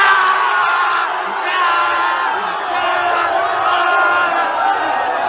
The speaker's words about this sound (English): Stop cheering!